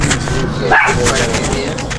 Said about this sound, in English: Dogs. Love them.